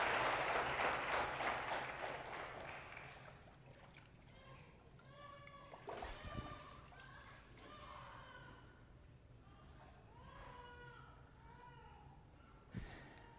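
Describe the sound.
A crowd bursts into loud, dense applause that fades out over a few seconds, followed by scattered voices and cheers, with a brief sharp splash-like sound near the end.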